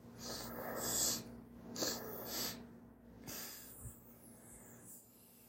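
Two quick, airy inhales through the nose, one right after the other, followed by a longer, softer breath let out through the mouth, as part of a guided breathing exercise. Fairly quiet, with no talking.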